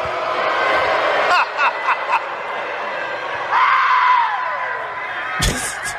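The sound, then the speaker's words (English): A large crowd roars with sustained booing as a reporter asks Kevin Durant how he would sum up his time in Brooklyn. A long, low jeer swells and slides downward in pitch over a dense wash of voices, and a sharp burst near the end cuts through the din. “Was he booed because he asked about Durant as a net, or was … booed because it's …?”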